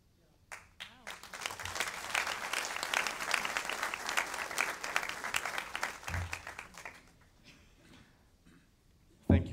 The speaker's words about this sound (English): that spontaneous applause. I was just going to say, can we give her a hand, please?